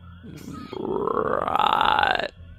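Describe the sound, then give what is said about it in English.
A person's voice imitates a frog's croak: one loud, drawn-out, guttural sound lasting about a second and a half, its pitch creeping upward before it cuts off abruptly. “Wait, can you make the frog noise one more time?”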